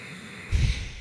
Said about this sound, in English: What is the reason of hot breath from my mouth?